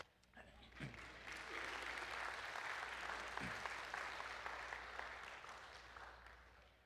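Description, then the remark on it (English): A crowd claps steadily for several seconds at the end of a song about Jesus during a sermon, a dense wash of applause that swells quickly and holds before easing off slightly, with a faint voice briefly audible beneath it. “Okay, that's where you clap.”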